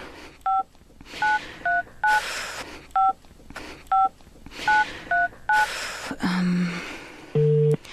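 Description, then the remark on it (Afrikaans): A rapid series of about a dozen short two-tone telephone keypad beeps in two bursts as a captain's number is dialed, separated by brief noisy gaps, then a low hum and a steady ringing tone at the end. “Jy sal hom moet bel en sê...”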